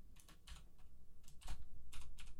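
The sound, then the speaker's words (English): Rapid, uneven clicking of keys on a computer keyboard as a person types notes for the next topic, fairly quiet, with bursts of several strokes in quick succession over a low background hum. “If you see me typing stuff, I'm literally typing codes for the next topic so I can actually be organized.”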